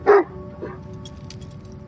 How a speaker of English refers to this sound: A little barking is good.